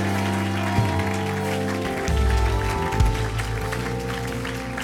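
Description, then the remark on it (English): An audience claps steadily for Jesus, a dense crackle of many hands, over a sustained, loud musical backing with low held tones. “Give one big hand clap for Jesus.”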